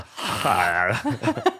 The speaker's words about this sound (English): You want to get weird of like all these like weird breathing noises I'm doing? Yeah, some of them. I'll do that right now.